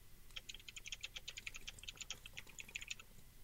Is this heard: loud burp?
no